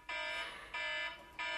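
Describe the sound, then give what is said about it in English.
A loud, harsh electronic alarm blares in repeated pulses, three bursts separated by brief gaps, with a buzzing tone rich in overtones and no voices. “The alarm's still blaring.”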